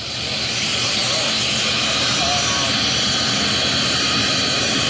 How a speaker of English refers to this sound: here comes Air Force One taxiing down the runway as we wait for President Biden to get off the plane